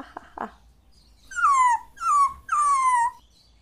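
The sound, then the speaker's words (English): A dog gives three drawn-out, falling barks in quick succession, fairly loud, each with a whiny, yelping edge, after a couple of soft thumps at the start. “He starts barking again.”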